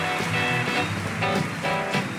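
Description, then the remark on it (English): Steady, dense applause from the audience of NPR's Ask Me Another, a continuous loud wash of many hands clapping for about two seconds with no pauses and no voices on top. “Hey, everybody, have such a round of applause.”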